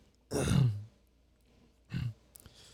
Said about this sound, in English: Let him clear his throat.